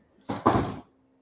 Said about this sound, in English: The dog just knocked over the clothes basket.